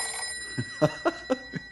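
An old telephone bell at a ranger headquarters rings in a quick, even series of five metallic strikes, moderately loud, with a faint steady hum underneath and no voices.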